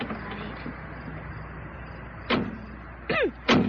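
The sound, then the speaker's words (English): Someone climbs into an old beat-up truck: a dull thud, a brief creaking squeak, then the door shuts with a solid slam, all over a steady low background rumble with no talking. “Come on over and get in the truck.”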